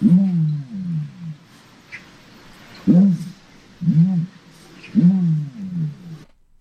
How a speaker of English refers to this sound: It was an ostrich. Ostrich, interesting sound, huh?